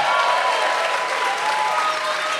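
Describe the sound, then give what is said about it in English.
An audience claps steadily in dense, sustained applause that fills the whole moment at an even, fairly loud level, with no one speaking over it. “Not only that, but not to pick an applause line, I swear to God, this is not here as an applause line.”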